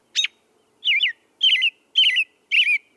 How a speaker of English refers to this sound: Before the field sparrows have quite gone the rounds, the robin in the big elm warbles loudly his claim to the spot in the old tree.